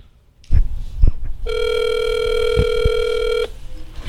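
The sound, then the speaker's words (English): A single two-second ringback tone from a phone's earpiece on an outgoing call, a steady electronic buzz, clear, with soft handling thumps and clicks before and during it. “First, you gotta answer the phone.”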